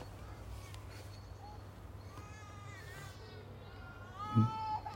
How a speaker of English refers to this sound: Now that you can hear is not a bird. That's a screaming daughter. A lesser spotted screaming daughter. She is being looked after, by the way. Not just letting her scream in a random room.